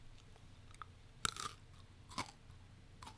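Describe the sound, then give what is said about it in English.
Someone bites into and chews a crunchy packaged snack: a few sharp, crackly crunches at irregular intervals, fairly quiet, with no talking. “Okay, now I'm going to eat it. It's very crunchy, so here we go.”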